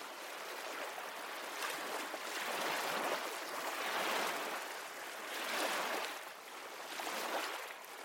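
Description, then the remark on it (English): Ocean waves wash in and recede on a sandy beach in a steady, broad hiss, swelling and fading every couple of seconds. A continuous surf sound with no voices. “Watch the waves as they come and go, their steady rhythm creating a sense of inner peace.”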